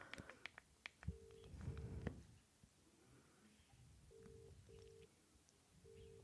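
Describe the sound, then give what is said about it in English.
An outgoing phone call to a company, where a car is parked in front of their garage, rings unanswered: a steady double-burst ringing tone repeats in pairs with pauses between, heard through the line after a few sharp clicks at the start. “I'm ringing the company where the car is parked in their in the front of their garage”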